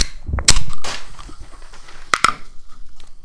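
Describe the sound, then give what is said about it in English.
A blackberry lime flavored drink can cracks open with a sharp, loud pop followed by a short fizzing hiss, then two quick clicks sound close together a moment later. No one speaks. “Yeah, you crack and pour.”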